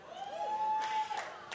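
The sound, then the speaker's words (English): Light, scattered clapping from a small church audience of about 13 tithers, faint and brief, with a thin steady whistle-like tone running underneath and a few murmurs of crowd noise. “All the tithers are clapping.”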